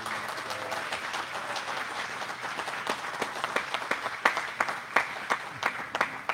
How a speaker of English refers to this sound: give a little applause there, a little welcome to James Clare III